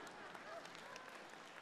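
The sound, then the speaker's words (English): Faint, scattered hand claps from a single person during a sermon, irregular and soft, over a steady hiss and low crowd murmur. “There's one person clapping here.”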